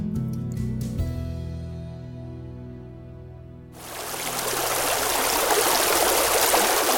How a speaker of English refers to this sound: The water laps at us, pulls us in